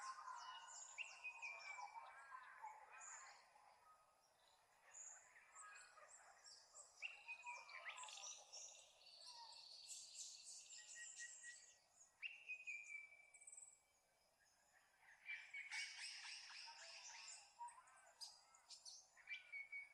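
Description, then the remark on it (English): Several birds sing at once in a busy outdoor chorus, overlapping chirps, trills and whistles continuing without pause, moderately loud, with a faint insect-like buzz underneath. “Let yourself witness the sounds of the birds instead of entangle in them.”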